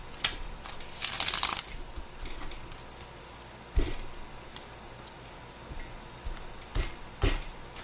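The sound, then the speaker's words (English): Shuffling of a deck of tarot cards for a Pisces reading for July, with a dense riffling burst followed by scattered sharp taps and soft card slaps at an irregular pace, with no voices. “Go ahead and shuffle.”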